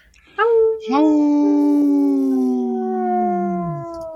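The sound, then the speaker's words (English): A wolf howls, with two drawn-out, overlapping calls that rise in quick succession, then hold steady for several seconds before gliding slowly downward and fading. The howling is loud. “Howl!”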